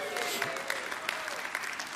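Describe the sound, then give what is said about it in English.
An audience claps and applauds for itself after being congratulated for setting their clocks correctly, a dense wash of many hands with a few sharper individual claps standing out, fairly loud and sustained throughout. “So, I mean, what was all that clapping?”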